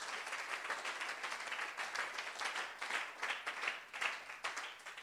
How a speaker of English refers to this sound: If you believe, shout a big amen. And clap your hands together for Jesus.